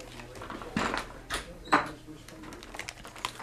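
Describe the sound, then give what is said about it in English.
A door is closed: a few sharp clunks and rattles, the loudest near the middle, over a quiet room hum with a faint murmur in the background. “Sorry, I had to close the door there.”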